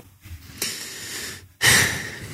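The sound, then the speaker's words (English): Two heavy, noisy inhalations, the first longer and the second sharper and louder, separated by a short pause, with no talking. “You know, when we speak about this, I'm sort of breathing in heavily because people struggle with it on a daily basis.”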